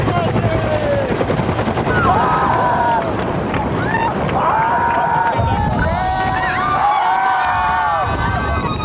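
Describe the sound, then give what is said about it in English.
A helicopter's rotor thuds loudly and continuously, a dense rapid chop filling the whole stretch while several voices shout and whoop over the noise, as Will Smith bungee jumps out of the helicopter into the Grand Canyon to celebrate his 50th birthday. “But he bungee jumped into the Grand Canyon to celebrate his birthday. He jumped out of a helicopter, and he did all of this on like social media and YouTube.”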